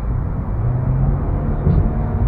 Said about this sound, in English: Alright, baby, slow it down. Stop revving your engine. If you must know, I drive a 2018 Subaru Impreza Sport Trim.